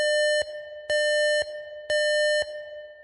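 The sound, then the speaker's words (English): A siren blares with a loud, steady electronic tone that cycles in a repeating two-part pattern, switching between stronger and slightly weaker bursts roughly every half second. No voices. “And you hear, like, a siren blaring.”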